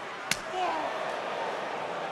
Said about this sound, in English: Dreams of doing that to people. Slapping their souls out of their bodies.